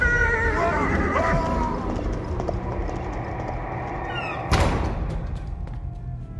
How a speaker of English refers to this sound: But as Will instinctively threw up one arm in self-defense, the black stallion screamed, fell back, and rider and horse disappeared into the dark.